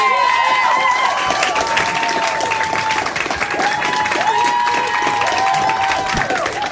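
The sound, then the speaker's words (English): A comedy show audience applauds steadily as the last comedian of the night, Sandy Honig, is introduced, a dense wash of clapping with cheers and whoops rising over it, loud and sustained throughout without letting up. “Well, start clapping for our last comedian of the night.”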